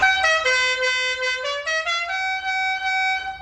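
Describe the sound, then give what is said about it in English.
The musical horn of a 1969 Dodge Charger, the General Lee driven by the Duke boys, blares a quick tune of about a dozen brassy notes, rising and falling in pitch before ending on a long held tone. Loud and steady, with no voices. “All right, this car is a 1969 Dodge Charger driven by the Duke boys, Bo and Luke. It's known for its signature horn.”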